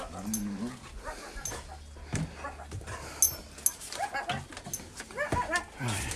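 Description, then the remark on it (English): A female dog whimpers and yips excitedly in greeting, a string of high, wavering whines and short squeaks, with muffled background noise and a faint human voice now and then. “You'll never ever beat the greeting you get from a dog.”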